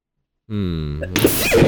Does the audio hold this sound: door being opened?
no